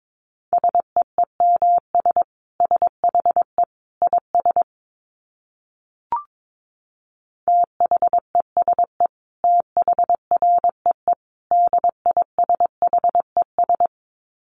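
Morse code at about 22 words per minute: a single steady mid-pitched tone keyed in brisk dits and dahs, two runs split by a short pause with a faint click, no voices.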